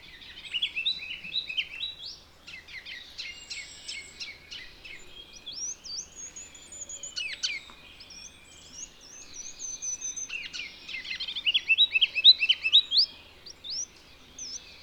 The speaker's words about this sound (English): Heading back toward the pond, I come across none other than a ruby-crowned kinglet. What a silly-sounding song.